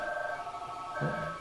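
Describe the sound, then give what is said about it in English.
A mobile phone ringtone sounds with steady, layered electronic tones at moderate volume, and a person starts talking over it near the end. “Oh, my phone's ringing.”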